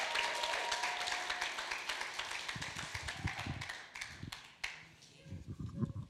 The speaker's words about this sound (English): So I would love if we can put our hands together and make her feel as welcomed as we can as I invite